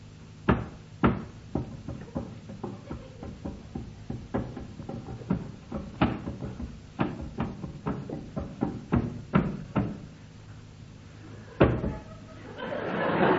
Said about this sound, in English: Collins Sell will play a tune on the dummy keyboard, and the teams will try to work out what it is.